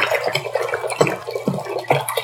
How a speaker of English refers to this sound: he's getting a pot and he's pouring some distilled water into it right now.